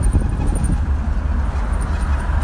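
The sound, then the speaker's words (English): Riding on the back of a scooter on the way to the Bronx: a steady, loud low rumble of engine and road noise with a wash of wind hiss, continuous and unbroken for the whole stretch, with no voices. “reporting live on the back of my brother's scooter on my way to the Bronx to get some drugs.”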